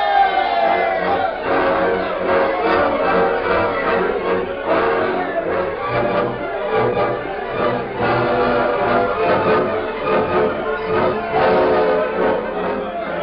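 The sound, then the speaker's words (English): A steady, dense murmur of many overlapping voices as a crowd empties a meeting hall in Crawford City after a vigilante meeting is adjourned, with no single words standing out and the level holding fairly even throughout. “As the crowd emptied the hall and drifted homeward, the Lone Ranger and Tonto waited in the shadows beside the building.”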